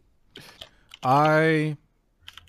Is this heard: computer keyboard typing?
yes